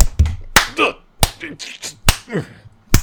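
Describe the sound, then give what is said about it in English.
Sharp slaps on a belly land about five times at an uneven pace, each a loud fleshy smack, with short vocal sounds and murmurs filling the gaps between hits. “Stop thumping my tub.”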